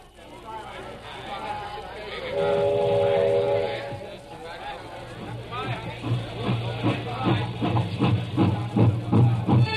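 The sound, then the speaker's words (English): A train rumbles steadily along the tracks, with a sustained whistle-like tone early on, then a rhythmic clickety-clack of wheels growing louder toward the end. “On our way to the station. The railroad station?”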